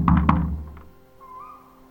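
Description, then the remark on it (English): A woman knocks louder on a wooden front door after ringing the doorbell: two loud, solid, heavy knocks, then a faint third tap, then quiet with a thin whistle-like tone lingering in the background. “So she knocks louder.”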